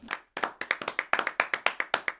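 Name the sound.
applause sound effect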